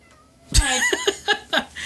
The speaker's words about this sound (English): Cat meowing.